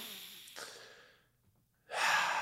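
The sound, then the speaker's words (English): A long, breathy exhale that fades into near silence, followed by a loud, airy rush of breath, like a deep yawning inhale, as a person yawns while taking a deep breath. “Sorry, I was yawning through the deep breath.”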